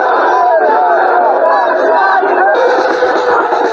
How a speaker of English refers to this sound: There were crowds that were out here on the streets the entire day, and it was during the evening then that things became ugly here on the streets when the police moved in with water cannon trucks.